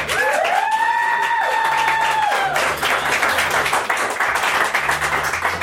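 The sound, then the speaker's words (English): A show audience claps steadily for several seconds to vote for the Wizard of Oz option, a dense wash of applause, with a loud rising whoop or whistle cutting through near the start. “So, ladies and gentlemen, based on your applause, who would like to hear Wizard of Oz?”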